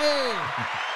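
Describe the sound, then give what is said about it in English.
A brief applause sound effect: a dense, steady wash of clapping that lasts about a second, opening with a falling whistle-like tone and a few low voice-like murmurs underneath. “Was that the clapping one? Yeah. Round of applause.”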